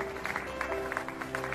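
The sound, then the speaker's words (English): A crowd outdoors cheers and claps together for health workers on the front lines of the pandemic, such as doctors, nurses, EMTs and janitors, a steady wash of applause with bursts of whoops rising above it. “They're cheering for those on the front lines of the pandemic, doctors, the nurses, the EMTs, the janitors.”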